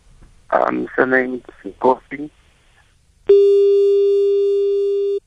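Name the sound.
busy tone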